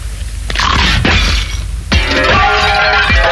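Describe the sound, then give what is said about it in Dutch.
Loud, crisp crunching bursts of new Smis crispy potato chips, a few sharp crackling crunches separated by brief pauses, followed by a longer dense stretch of crackling, with no talking. “Ze smaken zoals ze kraken. Crispy geluidje toch?”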